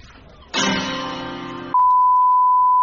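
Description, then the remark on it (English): A single rich guitar chord rings out for just over a second as someone walks in through the door of a music shop, then cuts off abruptly into a loud, steady, high-pitched electronic tone that holds to the end. “every time you walk in, it plays a specific chord on the guitar, and that leads into some music.”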